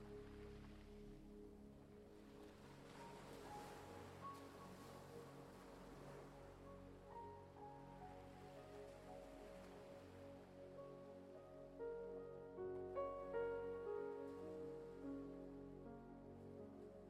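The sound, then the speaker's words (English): Soft ocean waves wash steadily in the background, a low continuous surf sound mixed with sustained, humming tones. It stays quiet and calm, swelling slightly near the end, with no talking. “Feel your body a little heavier and the sound of the waves less intense.”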